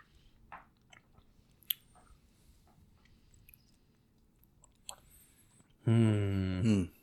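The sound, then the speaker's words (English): Quiet mouth sounds of someone taking a swig of Foolproof from a glass, sipping and swallowing with small wet clicks, followed by a loud, brief satisfied voiced sigh near the end. “Let's take another swig of this foolproof.”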